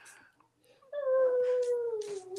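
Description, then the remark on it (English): A dog lets out a loud, drawn-out howl that slides slowly downward in pitch with a whiny, whimpering edge, following a brief stretch of faint, muffled sound. “Your dog is tired. Even your dog doesn't agree.”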